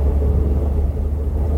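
A steady, loud low-pitched race car engine rumble drones continuously as the car is driven at speed on a track, heard from inside the car, with no voices over it.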